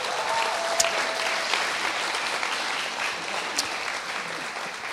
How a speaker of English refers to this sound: Again, clap for them.